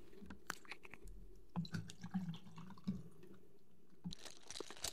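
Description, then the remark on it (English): Water pours and trickles into a glass in a steady stream for a few seconds, with small splashes and clinks, ending in a brighter rush of splashing near the end. “So without further ado, let's pour us up our refreshment.”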